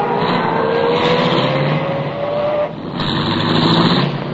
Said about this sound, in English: I started the car, and the moment I pulled away from the curb, I had company again.